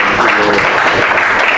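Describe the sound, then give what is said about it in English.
An audience applauds, a steady, dense wash of clapping that holds at an even, loud level throughout, with no gaps or pauses. “so we're applauding today.”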